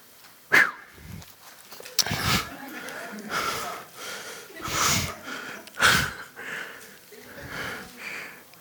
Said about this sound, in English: I'm going to tell you, I really do not like the fact that I've been breathing hard lately, especially after fast week.